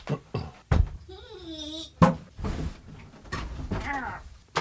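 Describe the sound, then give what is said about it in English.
Chairs shifted around: several hard knocks and thuds, a drawn-out squeaky creak, and rustling scrapes as the chairs are dragged and switched. “Can we switch chairs?”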